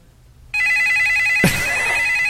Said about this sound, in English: Let me get some phones ringing. Yeah, where's our ringing? We used to have a whole ringing medley. Yeah, I don't know. Let me see if I can find some ringing phones here. Hold on a second.